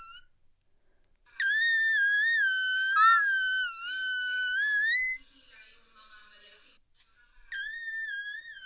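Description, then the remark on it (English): A piercing whistle-register sung note is held for several seconds with small wavering bends, followed by faint breathy sounds and then another high, loud note starting up. “I'm not sure, as long as you're not breathing it in, but your whistle notes are pretty high.”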